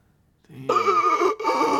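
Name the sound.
sharp gasp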